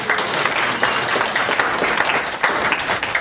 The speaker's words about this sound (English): So everybody give Dr. Bill and CBS a round of applause, please.